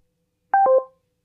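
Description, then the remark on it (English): A short three-note electronic chime descending in pitch, clean, the call-ending tone of an Amazon Alexa smart speaker hanging up a call, followed by silence. No talking. “Alexa, hang up.”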